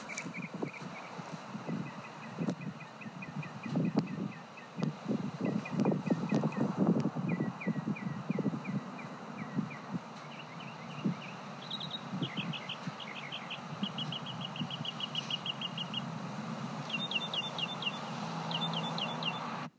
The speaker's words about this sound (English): So I recorded again the birds singing their songs, and you can hear the wind blowing. So just, you know, bear with me on that. But here is another sound of the birds.